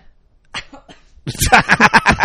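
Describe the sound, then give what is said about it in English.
A few faint, scattered bursts give way to a loud fit of rapid coughing from a man, about six harsh hacks in quick rhythmic succession. “got so worked up, he coughed.”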